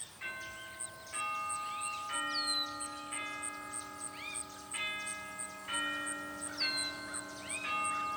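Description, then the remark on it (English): A doorbell plays a slow, ringing chime melody, each struck note sustaining and overlapping the next, with a faint steady ticking running underneath throughout. No one speaks. “Is there a doorbell? There is a doorbell. I ring the doorbell.”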